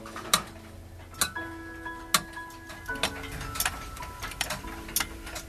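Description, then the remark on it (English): Several clocks tick out of step with one another in a clock repairman's garage workshop, sharp clicks landing at uneven intervals, while faint ringing tones linger underneath. “Alone, yet surrounded by a symphony of clicks, tocks, and ticks.”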